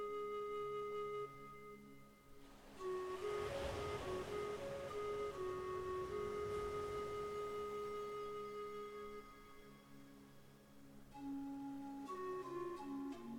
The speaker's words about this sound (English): Feel what it would be like to imagine that you are standing barefoot on that beautiful, safe beach, looking out over the gentle ocean waves as they roll towards the sandy shore.